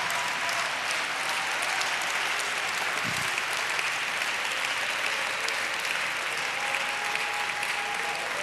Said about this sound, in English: Oh, come on, let's clap our hands and praise Jesus.